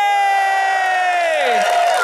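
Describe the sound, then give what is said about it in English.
A live audience at the Dublin International Film Festival 2020 in Dublin, Ireland cheers loudly, with sustained whoops and a voice sliding down in pitch over a bed of clapping and crowd noise, steady throughout the short burst. “Thank you very much. What a lovely reception.”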